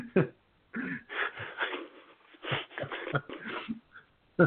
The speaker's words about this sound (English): I had a good cough.